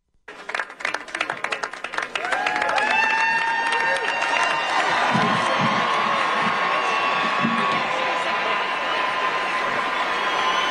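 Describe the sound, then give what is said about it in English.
A large crowd erupts, starting with scattered claps and shouts that quickly swell into sustained cheering, whooping and excited voices, loud and continuous for several seconds. “Crowd reaction. People gasping, yes.”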